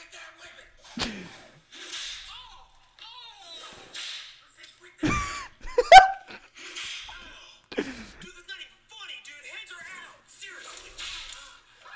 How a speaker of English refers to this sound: They have whips. It's two dudes in a suburb with whips.